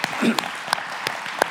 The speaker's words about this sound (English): And I can hear the applause of the live streamers right now as well.